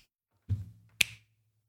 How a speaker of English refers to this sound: Damn, could you hear the reverb in that? That was actually real good. I know. I was like, did he just turn on his Switch and just connect the Joy-Cons?